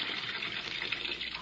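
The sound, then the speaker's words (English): Water gushes steadily from a tap into a bathtub being filled about half full, a continuous splashing rush that stays loud and even throughout, with no voices over it. “But if I could get into a pair of swimming trunks and into a tub half full of water, I think I may be able to prove a very important point.”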